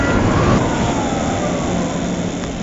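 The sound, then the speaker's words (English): A steady, loud rush of road and wind noise as a light electric motorbike of about 100 kilograms with a 72 volt battery weaves through traffic at the top of a road, with a faint high motor whine sliding slightly downward beneath the roar. “I'm just coming up to the top of my road now, and there's a bit of traffic here that I can weave through.”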